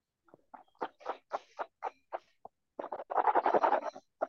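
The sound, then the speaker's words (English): Water sloshed around inside a mouth like a mouthwash rinse: a string of short, wet squelching bursts, then a denser, steady churn of liquid before a swallow. Moderately loud, with no talking. “Okay, I sloshed that around, swallowed it.”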